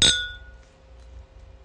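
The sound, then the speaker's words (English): A single bright clink of glasses holding drinks topped with whipped cream, touching in a toast in Las Vegas, sharp, with a high ringing tone that fades quickly into quiet. “All right, let's take a sip. Let's see how this goes, okay? Cheers. Cheers.”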